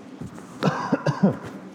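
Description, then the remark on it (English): A fairly loud cough from a speaker at a microphone during a sermon, a sharp burst followed by a few quicker hacking coughs in rapid succession, with no talking. “I'm going to try not to cough into the mic.”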